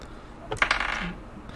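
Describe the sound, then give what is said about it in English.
Dice are rolled for a character's stats. They rattle and clatter onto a hard surface in a quick burst of several sharp, bright clicks lasting about half a second, then settle into quiet. No one speaks. “I forgot to roll for her.”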